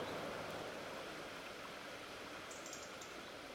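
The River Colne, recorded in summer, flows with a steady, continuous rush of water, soft and even throughout, with a faint high chirp near the end. No one speaks.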